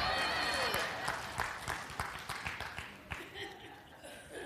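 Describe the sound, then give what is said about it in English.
An audience claps in a steady patter of sharp hand claps that gradually thins out. A brief high voice or cheer rises over the start. “Stop clapping.”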